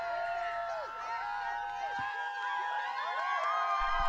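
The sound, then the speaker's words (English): A crowd cheers and applauds for about four seconds, many voices shouting and whooping over one another in a steady, loud wash of sound. “And of course, the applause is for me.”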